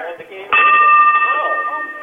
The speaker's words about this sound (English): Okay, hold on. Let's see if we get one of these guys to ring the bell for you.